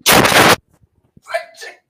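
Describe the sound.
A loud, raspy burp bursts out for about half a second, harsh and gravelly, then after a short pause a brief voiced sound follows, like a quick vocal reaction.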